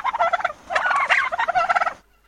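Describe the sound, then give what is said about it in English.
A turkey named Tinsel gobbles in a rapid, warbling rattle of about two seconds, with three quick bursts of loud throaty trills running together before it stops abruptly. No other sounds accompany it. “I know I don't speak gobble like you do, but no.”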